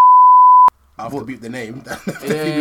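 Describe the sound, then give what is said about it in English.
A loud, steady censor bleep holds for under a second and cuts off sharply. After a brief pause, a person starts talking. “Beep the name.”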